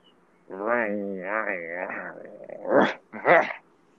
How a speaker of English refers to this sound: Sorry, my dog came in. Hey, little stinker. How's it going?